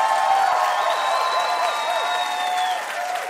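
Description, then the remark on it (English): Sustained audience applause for Dennis Quaid and Christian Cooke, with scattered cheers and whoops rising above the dense, steady clapping, loud throughout the few seconds before tapering slightly at the end. “Let's hear it one more time for Dennis Quaid, Christian Cooke.”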